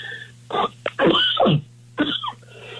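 A short fit of coughing: three harsh, rasping bursts, the middle one longer and hoarser, from someone struggling with a cold while talking about the weather forecast, over a steady low electrical hum.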